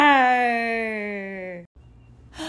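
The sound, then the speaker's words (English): A single loud, drawn-out roar made by a human voice imitating a lion, its pitch sliding slowly downward for over a second before cutting off, followed by a quick breath. “Then he opened his mouth very wide and he roared the loudest roar he had ever roared in his life.”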